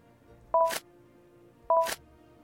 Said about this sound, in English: I'm just pressing the enter key a couple of times so we could hear that. But if you hear that sound, that basically means your gift has been picked up and you can move on your merry way.